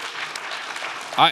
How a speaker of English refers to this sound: We can clap.